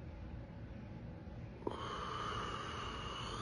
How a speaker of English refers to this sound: All right, let's add some breath to that and create some synergy with the affirmations and the breathing. We're going to go in through the nose and hold it, out through the mouth.